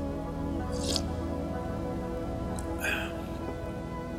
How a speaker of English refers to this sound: But, now, I guess I can say, let me get a sip of my coffee here. I got a nice hot cup of coffee to sit down and explain myself to you today. So I'm going to take a sip.